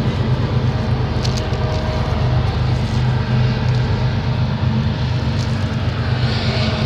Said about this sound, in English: Got a little competition here with the train. Can you hear me? Can you still hear me? I think I'll wait a second.